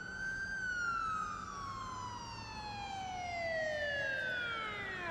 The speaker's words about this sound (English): You can you kind of step into an alley or kind of climb into an alley, and you glance out it just as these cop cars come roaring past you, come around the block, and you can like hear the tone shift as they go into that underground parking garage.